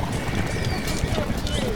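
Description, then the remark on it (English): Dense, steady clatter of thousands of horses' hooves mixed with a low grinding rumble of hundreds of cartwheels on a road, continuous and fairly loud throughout, with a voice speaking over the noise. “Hundreds of cartwheels grinding, thousands of horses' hooves clattering, the clink and clank of knights sweltering in their mail armour.”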